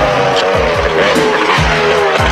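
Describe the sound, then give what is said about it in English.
T-Bob, transformed into motor scooter mode, roars off at speed down the highway, its engine revving in quick repeated surges while tires squeal loudly and steadily underneath, continuous with no voices. “T-Bob transforms and they go speeding down the highway to tell Matt.”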